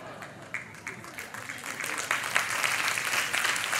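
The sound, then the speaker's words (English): A crowd breaks into applause, scattered claps quickly thickening into a steady, dense wash of clapping that grows slightly louder over a few seconds, with faint voices mixed in. “Okay, I'm not ready for you to clap yet.”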